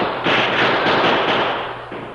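A loud, dense wash of battle gunfire from guns fired behind wagons during a Comanche attack, crackling shots blurring together into a continuous roar that swells in and holds for about two seconds, with no voices.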